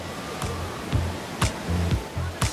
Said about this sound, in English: Look at these waves. They're huge.